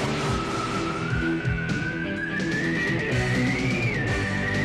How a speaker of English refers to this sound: The sounds of football. The new sound of football. The new Nerf Turbo Screamer Football, specially designed for the screaming sound of excitement. Turbocharged for long-distance launches, so anyone can have a rocket arm.